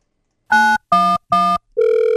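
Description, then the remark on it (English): Three short, evenly spaced electronic phone beeps, like keypad presses, followed by a steady, continuous telephone dial tone, as a sister calls 911 from inside a home during a fight between two siblings. Fairly loud, with no voices. “At one point in time, the sister called 911.”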